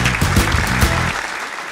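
A short, loud burst of crowd applause, many hands clapping densely with some vocal cheering mixed in, cutting off and fading to quiet after about a second.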